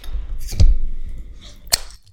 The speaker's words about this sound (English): So can we open up another beer, please, for this last piece of the conversation? We can. I'll take a Modelo.